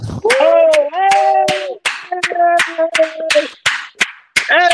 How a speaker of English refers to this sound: Congratulations. That applause. Man, applause out.